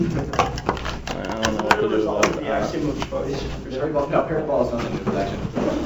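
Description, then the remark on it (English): Quiz buzzer buttons click repeatedly in an irregular pattern of sharp taps, mixed in with several people talking over them. “Have there been problems with this buzzer system?”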